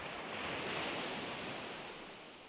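Steady rushing surf from ocean waves washing onto the shore, a dense wash of noise that swells slightly and then eases off, with no voices present.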